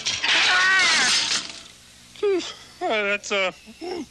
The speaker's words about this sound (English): And in both that and here, he crashes into something and falls off his bike.